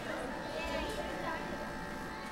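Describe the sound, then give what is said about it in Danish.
A noisy cafeteria with slot machines: children scream and chatter in the background over a steady, droning refrigerator hum, the din continuous and fairly loud throughout. “Men her skrigende børn, larmende køleskab, spillemaskiner og skarpt neonlys.”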